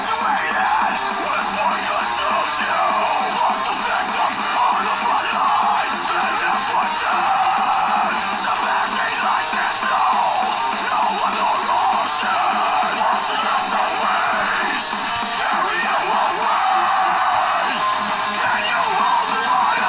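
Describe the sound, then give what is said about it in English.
A loud, dense heavy metal song plays continuously, with a wall of distorted guitars and harsh screamed vocals sustained at full volume throughout, with no pauses or quiet passages. “it's going to get kind of loud. Here it is. Here's … by the … Band.”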